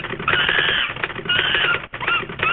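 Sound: typewriter typing sound effect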